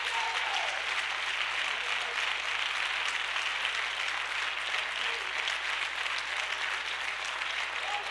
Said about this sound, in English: Somebody clap your hands and give the Lord praise. I know you got your Bible. Put it down for a second and clap your hands.